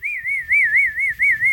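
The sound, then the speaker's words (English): A person whistles a steady, wavering tone with a gentle warble, clear, lasting a couple of seconds with no talking, whistled instead of clapping. “My new thing is to whistle now instead of clap.”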